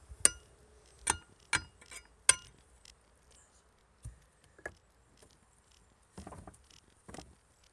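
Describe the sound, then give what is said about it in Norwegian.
A stone strikes window latches in four sharp, bright metallic clacks at an uneven pace, then a couple of softer knocks and a brief scraping rattle. No one speaks. “Så jeg fortsatte å ta opp lyden mens jeg slo haspene på vinduet av med en stein.”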